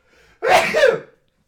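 A single loud, explosive sneeze, preceded by a faint sharp inhale and trailing off after about half a second. No one speaks.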